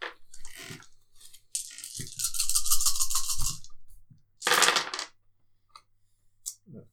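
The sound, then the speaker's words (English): Nine dice, rolled for an attack, rattle and clatter across a hard tabletop, a long rolling burst followed by a shorter second tumble, with a few stray clicks as they settle. Fairly loud, with no talking. “Make a 9 dice attack.”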